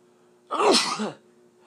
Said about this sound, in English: Whenever I sneeze like that, it tells me a cold is on its way.